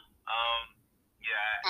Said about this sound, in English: Whenever you see the thing go mute, just know it's usually a phone call.